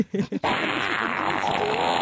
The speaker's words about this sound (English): Tess is so over the farting noises.